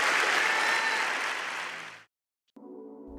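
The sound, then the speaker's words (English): A burst of audience applause, loud and dense with many hands clapping, fades out over two seconds before cutting to silence, followed by a brief steady tonal hum. “You got to clap better than that.”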